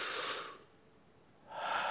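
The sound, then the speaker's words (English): A deliberate, breathy exhale, heard as two airy rushes of breath separated by a brief quiet pause, with no talking. “And we exhale forgiveness on others.”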